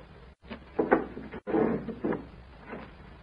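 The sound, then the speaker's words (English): A door is opened, with a few short wooden clunks and rustling bursts over about three seconds and a brief pause between them. No one speaks. “See first who is at the door.”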